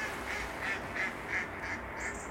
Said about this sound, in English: Beautifully queued up. Some kind of bird. That will be one of our mallards, yeah, having a wee laugh at us.